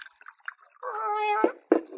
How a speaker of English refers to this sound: Hush up, cat.